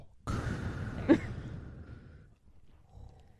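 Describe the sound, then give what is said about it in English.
A person imitates a character's mechanical respirator breathing from a film scene: one long, raspy, hissing breath, fairly loud, then trailing off into quiet. “there's no music during the scene, so like every 10 seconds you hear just like his breath.”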